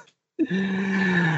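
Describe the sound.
A person lets out a low, sustained growl that starts abruptly after a brief silence and holds steady and fairly loud for about a second, with a rough, throaty, voiced tone.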